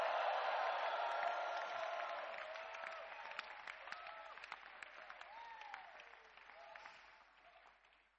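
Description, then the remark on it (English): An audience gives the Lord a shout and a clap offering, a dense, sustained wave of applause with scattered voices calling out over it, gradually thinning and fading toward the end. “Give the Lord a shout and a clap offering.”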